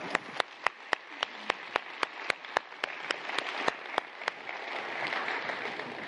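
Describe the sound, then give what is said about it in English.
An audience applauds the Zambia team at a Cornerstone Church service, with a steady, evenly spaced beat of sharp claps standing out over a bed of scattered clapping that thickens into a denser, continuous wash near the end. No one speaks. “Let's give a round of applause to the Zambia team.”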